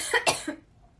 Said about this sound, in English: I'm starting to cough.